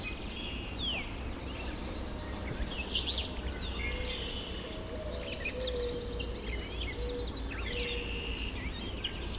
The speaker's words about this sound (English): Yellow warbler.